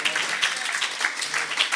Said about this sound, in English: Somebody clap your hands and say amen.